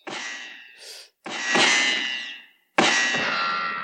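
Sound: gunshot sound effect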